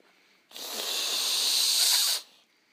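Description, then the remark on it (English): A creature turns its head toward the attacker and lets out one long, harsh hiss after being slashed with a dagger staff, lasting under two seconds, bright and airy with a sharp onset, holding steady before cutting off abruptly. No voices accompany it. “With that, you kind of slash it, but it doesn't really phase it all that much, but it kind of turns its head to you and hisses at you.”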